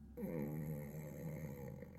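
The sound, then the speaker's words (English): A voice imitates the slow, heavy breathing of a professor brooding hunched over a desk: one long, raspy, rumbling exhale lasting nearly two seconds, fairly loud, with no words spoken. “His shoulders are hunched, and he seems to be breathing slowly and very, very, like...”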